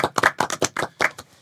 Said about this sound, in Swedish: Nu klappar vi alla här.